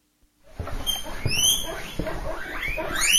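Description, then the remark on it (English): Rapid, high-pitched squeaks and chirps repeat in quick bursts, fairly loud, with light patter and shuffling underneath; a guinea pig squeaking excitedly. “Guinea pig?”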